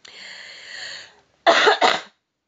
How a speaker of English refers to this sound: And even, sorry, I've got a cold. Hopefully I can edit those coughs out.